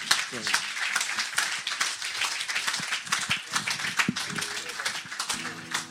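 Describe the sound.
Sustained audience applause, a dense crackle of many hands clapping that stays loud and steady throughout, with a voice briefly speaking over it toward the end.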